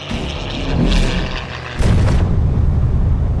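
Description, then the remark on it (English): A sharp, bright pop of a flare gun fired from a beach to signal a plane, with a fizzing whoosh, followed by a second louder burst and a deep, sustained rumbling roar, like an aircraft overhead. “Fire the flare gun. We need to get their attention.”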